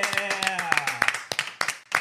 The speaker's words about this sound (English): I got to clap it up.